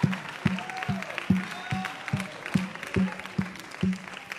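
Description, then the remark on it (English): An audience claps their hands together in a steady, unified rhythm, each beat landing about twice a second, with a soft murmur of voices underneath, clapping in praise to the Lord during an evening worship service. “Let's clap our hands unto the Lord and thank him for that which he's fixing to do in this house tonight.”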